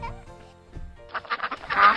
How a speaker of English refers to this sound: Hey, look, what is it? Yeah, it's a duck.